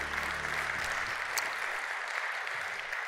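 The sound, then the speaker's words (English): A church audience breaks into steady, sustained applause, a dense wash of many hands clapping at even loudness throughout, with a faint low hum underneath during the first second. “Say yes, get an applause.”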